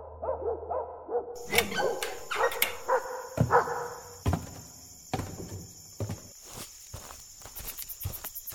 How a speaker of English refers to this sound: Who the hell's making all that noise at 3 o'clock in the morning, man? I'm trying to sleep. Got my dogs barking up a storm.